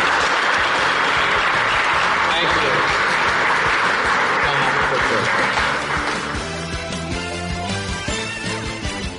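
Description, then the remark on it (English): A crowd applauds David Stern loudly with dense, steady clapping for about six seconds while a voice briefly speaks, then the clapping gives way to music. “Let's give a big round of applause to David Stern.”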